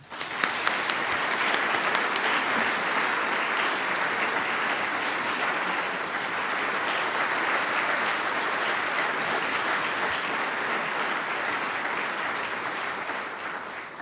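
An audience breaks into a sustained round of applause, a dense, steady wash of many hands clapping at even loudness for about fourteen seconds, with no voices standing out.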